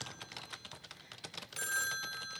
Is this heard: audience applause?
no